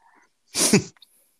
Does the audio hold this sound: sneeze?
yes